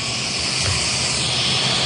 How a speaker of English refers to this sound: But at least it was a beautiful day for that touchdown. And you can see the plane is about to stop as the president will get off.